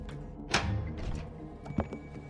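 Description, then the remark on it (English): A house door thuds shut as people run inside, followed by a brief rattle and a sharp metallic click as it's locked behind them. Fairly quiet, with a low background hum and no talking. “They run inside and lock the door behind them.”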